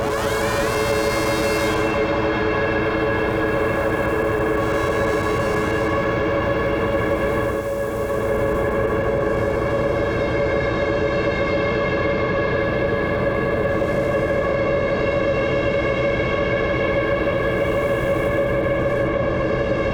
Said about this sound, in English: Now I'm just playing with the mix knob on the CXM. The reverb is set to self-oscillate as well.